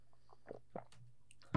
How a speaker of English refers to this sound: Just let me sip my water. Goodness. Could you not use a straw? Why? Is he not the loudest fucking drinker